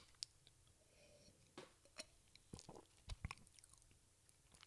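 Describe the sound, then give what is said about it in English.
A quick sip of beer: soft wet mouth clicks and a couple of gulping swallows, scattered over a few seconds against a quiet background with no talking. “kanbai chin chin chayo, otsukare-chan, let me take a real quick sip.”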